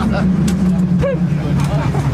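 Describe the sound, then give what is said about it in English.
A San Francisco cable car driver pulls hard on a long iron grip so its jaw clamps onto the moving cable, with a few sharp clanks of chattering ratchet teeth over a steady, loud mechanical rumble and hum. “Our driver pulls hard on a long iron grip so its jaw can clench cable as ratchet teeth chatter.”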